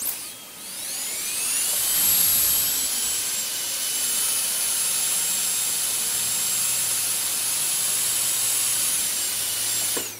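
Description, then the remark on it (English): A dentist's drill spins up to a piercing high-pitched whine, then holds a steady, loud shrill whir over a hissing rush for several seconds before cutting off. “It's a dentist drill because Danny Thomas's character on I'm a Big Girl Now was a dentist.”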